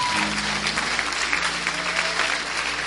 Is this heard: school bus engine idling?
no